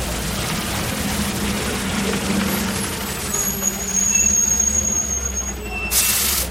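Idling bus engines rumble low and steady at a large outdoor bus depot in Dudley Square, Boston, operated by the Massachusetts Bay Transportation Authority, while a thin brake squeal whines, then a sharp, loud hiss of air brakes bursts out near the end.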